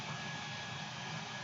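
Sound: hair dryer running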